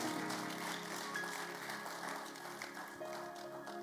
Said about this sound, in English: Yeah, I thought you could clap for Jesus.